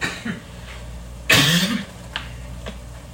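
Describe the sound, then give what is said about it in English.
A single loud cough bursts out mid-clip, followed by a couple of faint, short throat sounds, with no talking around it. “But it's funny how I start talking about this and I start coughing, because I wasn't coughing a couple of minutes ago and I was talking.”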